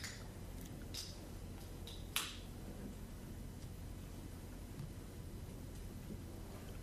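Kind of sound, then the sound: food or drink, beer can being opened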